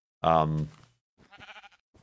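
A sheep lets out one loud, wavering bleat close by, followed by a softer, higher-pitched bleat-like call and a brief faint sound.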